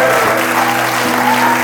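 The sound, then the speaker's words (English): A large crowd claps steadily and loudly, with a dense, continuous wash of applause mixed with cheering voices and stomping, after a count to ten, in Jesus' name, filling the whole moment without a break. “One, two, three, four, five, six, seven, eight, come on, nine, 10, stomp, cheer, in Jesus' name, come on.”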